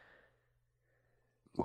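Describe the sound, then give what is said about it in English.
A faint, breathy inhale trails off into near silence, then one sudden loud sneeze, caused by allergies, bursts out at the very end. No one speaks. “I gotta sneeze again.”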